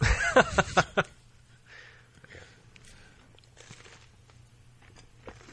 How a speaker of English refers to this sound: Sorry, I gotta eat my pizza. I'm fucking starving. I'll try not to chew directly into the mic.